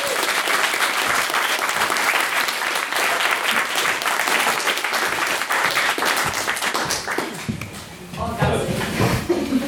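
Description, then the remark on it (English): A large audience claps steadily in a dense, continuous roar of applause that holds at full strength for several seconds before thinning slightly near the end. “So we're applauding for both her and our guest chair. So round of applause!”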